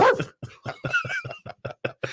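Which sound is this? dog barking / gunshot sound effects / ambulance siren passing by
dog barking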